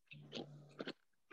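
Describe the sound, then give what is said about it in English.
Crunchy food being chewed, a few quick crisp bites in short bursts with brief pauses between them, fairly quiet overall. “I'm crunching.”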